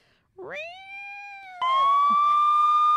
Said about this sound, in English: No, I have to play the sirens. People love it. They get excited.